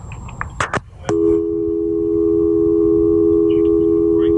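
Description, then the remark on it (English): A few sharp clicks as the caller hangs up and the line drops, then a loud, steady electronic telephone busy tone drones on unbroken to the end, with no voices. “Sounds like you hung up. I can't believe this. He hung up,”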